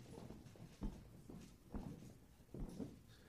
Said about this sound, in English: You are not the audience. Do this with me. Take your right foot and just stomp.